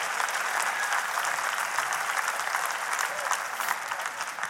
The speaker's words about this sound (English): And so we always want to honor him. Can we give him a hand clap of praise tonight?